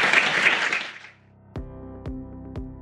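A burst of audience clapping, loud and dense, fades out after about a second, then three evenly spaced, ringing musical notes sound one after another.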